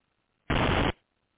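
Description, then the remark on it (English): A single loud burst of harsh static crackle on a phone line, lasting about half a second and cutting off abruptly, with faint line hiss before and after and no talking. “That little static, man, I tell you, the enemy always gets upset when somebody coming for his head.”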